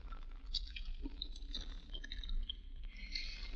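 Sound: chewing gum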